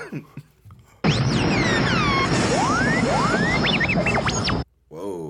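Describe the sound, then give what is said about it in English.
A loud, dense burst of July 4th fireworks lasting several seconds: a continuous crackling roar threaded with shrill whistles sweeping up and down in pitch, with brief voices just before and after. “No, that was fireworks.”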